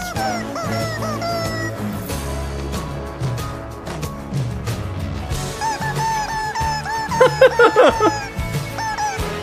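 A busy barnyard of chickens clucking and squawking, with a chicken walking around. Overlapping calls rise in a noisy burst near the end, with low background rumble throughout and no one speaking.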